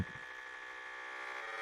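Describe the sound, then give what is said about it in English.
A steady electronic telephone tone hums continuously for under two seconds, buzzy and bright with dense harmonics, after a few soft low thumps at the very start, as someone tries to call a radio station. No one speaks. “I'm trying to call the radio station.”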